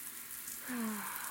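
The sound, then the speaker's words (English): A soft, steady hiss of a scalding shower running as a woman stretches under it, fairly quiet and continuous, with a brief low hum rising out of it partway through. “Her sinewy muscles fought against atrophy as she stretched under the scalding rain”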